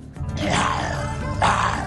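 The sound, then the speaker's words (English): A person growls like a lion, a sustained, rough, low-pitched roar with two swelling bursts over about two seconds, loud and without words. “So I just start growling like a lion.”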